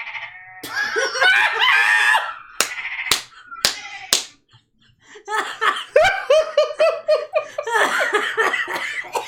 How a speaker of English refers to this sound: Play a sheep noise. These are sheep.